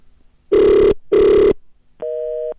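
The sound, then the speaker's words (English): A telephone ringback tone on an outgoing call: two loud, buzzy rings in quick succession, then a brief higher-pitched steady tone. Nobody speaks over it. “It's ringing.”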